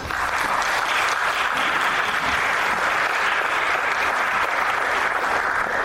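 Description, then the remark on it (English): Steady, dense applause from an audience, many hands clapping at once in a loud, continuous wash of noise that holds without pause for several seconds, with no voices standing out. “Well, I don't usually get those kind of applause until I leave the room, so thank you all very much.”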